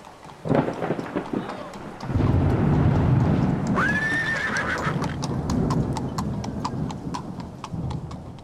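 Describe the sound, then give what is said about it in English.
Steady clip-clopping hooves of a horse-drawn carriage tap along in an even rhythm, with a horse whinnying midway and a low rumble of thunder and rain rolling underneath. “Where in the blazes is the man with the carriage?”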